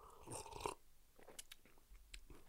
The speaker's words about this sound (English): I'm gonna get a sip of coffee here.